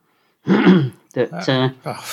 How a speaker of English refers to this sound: Could cut out the clearing your throat bit, though.